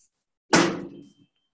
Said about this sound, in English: And then I'm going to close the mailbox.